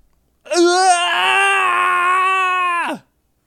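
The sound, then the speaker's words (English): A voice imitates the Wilhelm scream: a single loud, sustained scream lasting about two and a half seconds, holding a steady high pitch before cutting off abruptly, with no other sounds around it. “Perform the Wilhelm scream. Okay, here's the Wilhelm scream.”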